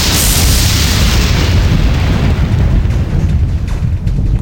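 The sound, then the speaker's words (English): A thunder sound effect: a loud, continuous roaring rumble with heavy low bass and a broad hiss on top, sustained for the whole clip before easing slightly near the end. No voices. “Thunder. Yeah, I liked that.”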